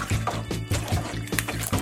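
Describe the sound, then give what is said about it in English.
Thick, fruity-smelling syrup glugs as it is poured into a primary fermenter bucket, a steady run of deep gulping pulses about every half second, with no voices. “So now almost everything has been poured into the bag. Now I'm going to rinse it. Poured into the primary fermenter bucket.”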